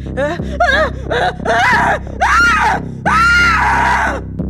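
A woman screams repeatedly in loud bursts, rising and wavering in pitch, ending in a long sustained shriek.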